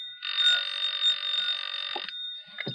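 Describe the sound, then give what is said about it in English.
An old-fashioned telephone bell rings at night in one long, steady burst lasting about two seconds, fairly loud, followed by a brief pause and a clunk like the receiver being picked up. “The return trip being occasioned by a phone call just as I was climbing into bed for the night.”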